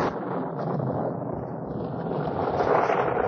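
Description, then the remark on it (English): A heavy cloudburst of rain pours down in a dense, steady roaring hiss that swells slightly toward the end, with no voices heard. “Goodness, it's a cloudburst.”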